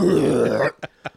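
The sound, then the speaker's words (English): A loud, low, gravelly belch rumbles for most of a second, then cuts off, followed by two short, quieter breathy bursts: a character belching in a bar in the film Dumb and Dumber. “Oh, when he's in the bar. When he belches.”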